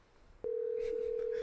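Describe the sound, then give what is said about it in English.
A phone's steady dial tone switches on abruptly after a brief quiet moment and holds loud and constant, with faint clicks and muffled background chatter over it, as someone prepares to call back an Arizona number. “Yeah, I'm gonna call him back.”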